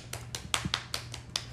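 A few hands give brief, light applause: roughly eight sharp, crisp claps in a quick, fairly even rhythm, fairly quiet, with no voices over them.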